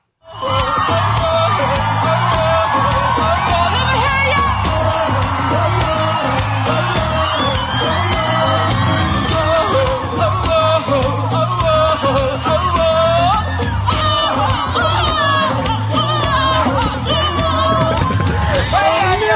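A loud live concert recording: amplified singing carries over a booming band while a large crowd whoops, yells and cheers throughout, the sound dense and continuous for the whole stretch.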